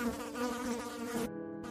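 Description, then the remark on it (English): A swarm of flies buzzes around a stainless steel Frigidaire refrigerator in a dense, continuous drone, a steady low hum with a slightly wavering pitch and a rough, layered texture. No voices are heard. “Now that he was a few feet from the fridge, the swarm of flies were thick enough to be visible.”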